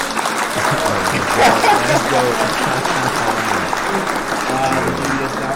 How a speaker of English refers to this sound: Yeah, hit the clap.